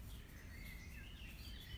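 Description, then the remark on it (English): Birds chirp and trill steadily in a small local park, their calls layered over a low rumble of background ambience with no voices present. “It's nice to have the birds.”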